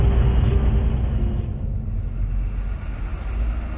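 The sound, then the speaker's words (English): A vehicle's engine rumbles loudly as a car is driven onto a ferry, a steady low roar with hissing noise that softens slightly partway through. “I'm just walking around the ferry. Car's getting loaded.”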